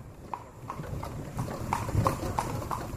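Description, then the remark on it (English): Steady, evenly spaced clip-clop of horse hooves on a hard street in Cartagena, Colombia, the rhythmic knocks of a horse-drawn carriage taking a tour of the city at a walking pace, over a low rumbling background. “Instead, I opt for a more sedate tour of the city aboard a horse-drawn carriage”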